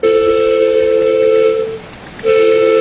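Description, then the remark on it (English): A miniature ridable railway train at Confederation Park in Burnaby, BC sounds its whistle: a long, steady, loud tone, a brief pause, then a second blast, with no voices. “The BC Society of Model Engineers is a non-profit club that runs the trains.”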